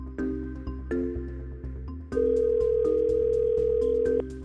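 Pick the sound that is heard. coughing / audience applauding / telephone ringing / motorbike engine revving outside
telephone ringing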